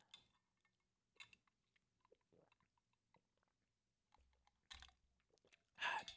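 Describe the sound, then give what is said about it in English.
Quiet mouth sounds of someone wearing Invisalign aligners sipping a drink: a few soft slurps and wet swallowing noises spread across the moment, ending with a louder gulp, with no talking. “Sorry, I needed to take a sip.”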